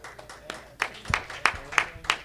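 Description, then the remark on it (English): A church audience claps for the Lord after a sermon, in steady unison, sharp rhythmic hand claps landing about three times a second over a low murmur of room noise, moderately loud. “Let's just give the Lord another hand clap.”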